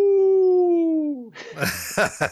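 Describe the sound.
A person imitates a hound dog howl: one long, loud, steady tone that slowly slides downward, then breaks into a few short, breathy bursts like laughter.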